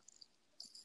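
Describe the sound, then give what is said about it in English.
Faint, high-pitched bird chirps in short bursts in the background, a brief call near the start and a brighter trill toward the end, with no one speaking. “And apologies if everyone hears a bird now in the background.”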